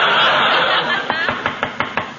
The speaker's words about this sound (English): Well, what are you knocking again for? I just want to get my nose out of the door.